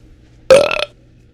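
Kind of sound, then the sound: human body sound, burp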